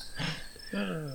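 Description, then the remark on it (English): Crickets chirp in a steady high-pitched trill over a short moment, with a brief human vocal sound rising underneath toward the end. “Crickets need to go right there because I just sucked bowels.”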